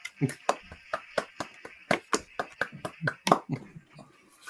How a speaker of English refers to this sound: With the new platform, there is some built-in sounds into the. Yeah, I can. Let's see. What do we got here? We got some clapping.